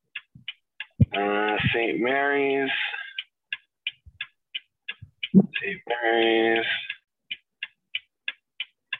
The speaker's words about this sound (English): What's that clicking sound? Is that your blinker?